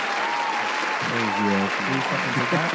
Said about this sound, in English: Round of applause to everybody in the new community at this time.